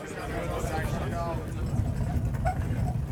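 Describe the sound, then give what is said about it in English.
A food trolley rolls steadily along a train aisle, its low continuous rumble running throughout, with indistinct voices murmuring. “A food trolley makes its way along the aisle.”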